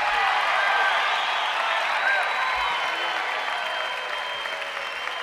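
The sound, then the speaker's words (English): A large, excited theater crowd at the Emory Theater in Cincinnati applauds steadily and enthusiastically, a dense, continuous wash of clapping, with a few faint whistles and cheers rising above it. “An excited crowd tonight at the beautiful Emory Theater here in Cincinnati.”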